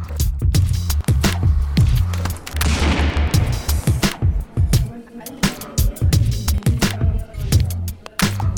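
Fireworks explode in a rapid, loud barrage of sharp bangs and crackles, densely overlapping for several seconds, with a brief whooshing burst partway through and faint crowd noise beneath.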